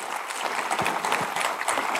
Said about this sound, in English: Shout out to anyone watching this live. Let's give a round of applause to people watching this live. We know you're there. We appreciate you, right?